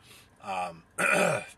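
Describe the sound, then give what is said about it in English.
A person clears their throat twice, two short, gravelly bursts with a brief pause between them, and no talking. “God, I can clear my throat again.”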